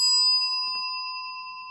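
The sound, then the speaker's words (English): A single bell is struck once and rings out with a bright, sustained metallic tone, fairly loud, slowly fading over nearly two seconds with no voices. “Should we ring the bell just to signify that I'm moving on?”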